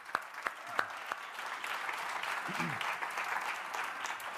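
A room full of people claps steadily, a dense wash of applause with a few sharp individual claps standing out at the start, sustained for several seconds at moderate volume.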